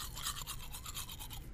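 Close-up toothbrush scrubbing, a steady rapid back-and-forth rhythm of bristles against teeth with wet, hissy strokes, continuous for the whole moment with no talking.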